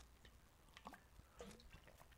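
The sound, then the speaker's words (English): Quiet sips of water from a bottle, two soft wet slurps about half a second apart with faint swallowing noises and no talking. “Caffeine today is brought to you by no caffeine at all, water.”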